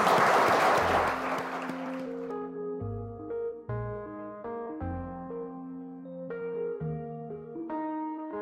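A short burst of audience clapping, loud at first and quickly fading within a couple of seconds, as a gentle melodic music piece with sustained notes takes over.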